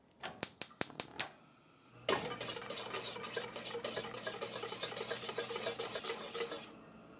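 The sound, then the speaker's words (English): Six quick, sharp clinks, then roughly five seconds of steady, rapid whisking of sugar and egg whites in a mixing bowl to make a quick meringue for a key lime pie: a dense scratchy swish with fine metallic ticking throughout. No one speaks. “So I've just combined my sugar and my egg whites in my mixing bowl, and I'm gonna whisk them just a little bit and then put them over some water that's heating on the stove.”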